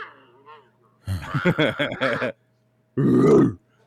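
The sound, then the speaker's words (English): A dog grunts hoarsely: a choppy string of rough, guttural snorts lasting about a second, then after a short pause one longer, gravelly grunt, fairly loud and with no talking. “He sounds like he's been smoking for 50 years.”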